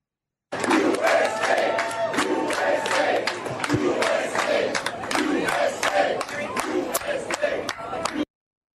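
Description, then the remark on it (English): A large crowd at a welcome center in Tel Aviv, Israel, cheers and shouts continuously during Blinken's visit, a dense roar of many voices with sharp whoops and claps poking through, loud and sustained for about eight seconds before cutting off. “They're cheering for all of us.”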